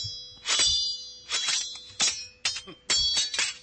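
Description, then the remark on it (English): A sound effect, taken from Spotify, of silverware dropping and clattering in four or five loud, bright metallic bursts at uneven intervals, each crash ringing briefly with high tinkling tones before the next. No one speaks. “Sorry, you just dropped some silverware, but that's what they got on Spotify.”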